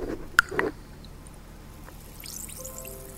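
Someone chugs an entire Barocca fizzy vitamin drink: a sharp click and a couple of quick wet gulping bursts, then a quieter stretch of faint crackling fizz with thin, high whistling tones. No one speaks.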